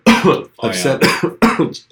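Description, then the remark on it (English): A person coughs and hiccups together in four quick, fairly loud bursts while drinking fizzy water, each a harsh catch of breath with short pauses in between, and no speech. “I was hiccuping and coughing at the same time.”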